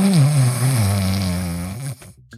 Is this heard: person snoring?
yes